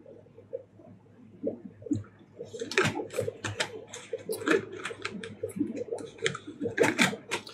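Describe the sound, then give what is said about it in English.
A plastic lid being screwed onto a water bottle: quiet fumbling at first, then a few seconds of rapid, irregular clicking and scraping as the cap is twisted, with no one speaking. “Why is it so hard to screw a lid on a water bottle?”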